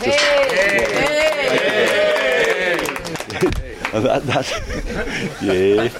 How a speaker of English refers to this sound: And I think we should give each other a quick round of applause.